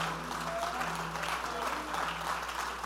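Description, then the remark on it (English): A church audience claps their hands to give God a high praise before being seated, a steady, dense wash of applause that carries on for a few seconds at moderate loudness, with no one speaking over it. “Clap your hands before you're seated and give God a high praise.”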